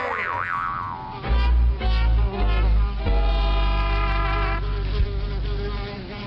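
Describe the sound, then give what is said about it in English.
Insects buzz loudly in overlapping drones, with a low throbbing hum and wavering higher whines that swell and fade over several seconds, no voices present. “But hey, you know what bugs me? All these bugs!”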